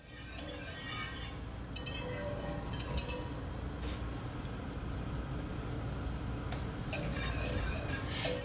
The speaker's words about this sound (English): Next up, we are going to heat the milk, cream, and pumpkin pie spice to boiling. So we are just going to be pouring the milk in here. I'll be mixing this around a little bit.